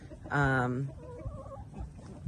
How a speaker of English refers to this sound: The chickens go in there pretty much all the time.